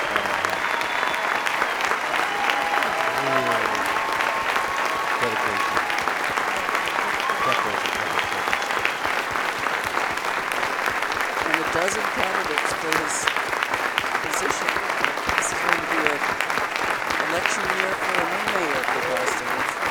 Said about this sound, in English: Now, everyone on this stage. Mayor Menino applauding the audience.